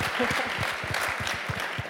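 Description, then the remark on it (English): An audience claps steadily, the dense patter of many hands forming a continuous, moderately loud wash of applause with no voices standing out. The applause is for the curator of an exhibit built around a Gordon Parks Life magazine profile of Stokely Carmichael. “Let's applaud her craft.”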